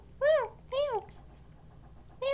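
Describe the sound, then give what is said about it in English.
A cat meows three times, two quick plaintive calls in a row, a short pause, then a third starting, each meow clear and fairly loud with no talking over it. “I mean, she's the most OCD cat in the world.”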